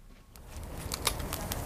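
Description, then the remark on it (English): A winter wood fire at the Cambridge Cyrenians allotment community garden crackles, with a handful of sharp, irregular pops and snaps over a steady low, rumbling hiss. No one speaks. “The background noise is the crackling of their winter fire that we sat around.”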